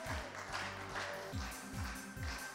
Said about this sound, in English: Oh, we got some clapping going.